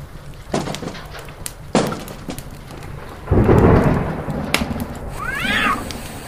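A low thunder rumble swells midway and fades slowly over a couple of seconds, framed by a few sharp cracks, with a cat meowing briefly near the end and no one talking.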